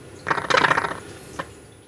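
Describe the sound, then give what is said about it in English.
Retro video game sound effect of a helicopter dropping depth charges on ocean-going ships: a bright, clattering electronic burst lasting under a second, followed by a single short blip, with no voices. “And I'm dropping my depth charges.”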